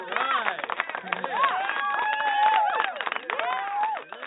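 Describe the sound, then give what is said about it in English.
A burst of applause sound effect with cheering, played for a caller on the line during a show. Many quick overlapping claps are mixed with whooping voices, steady and fairly loud for a few seconds, sounding thin and muffled as if played over a phone line. “Okay, I got to give you some applause.”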